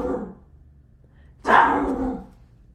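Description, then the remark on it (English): A dog lets out one loud, drawn-out bark, with a softer, muffled sound just before it and a low background hum throughout. “Okay, well, I have a box of cookies with me, and I'm gonna go move my dog really quick.”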